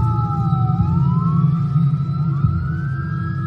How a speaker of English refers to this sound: We done struggle from the street to the alley. But I hear these sirens. Fire department ended up coming first.